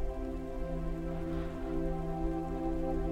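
Steady rain patters on a surface without a break, a soft, even hiss of drops layered over a low, sustained humming drone. No one speaks.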